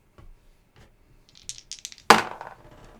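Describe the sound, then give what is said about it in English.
A few light clicks lead into a quick burst of clattering, then one sharp, bright knock followed by a short rattling settle, like dice tumbling across a hard tabletop. “So there's one dice off.”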